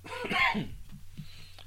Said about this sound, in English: As I keep coughing.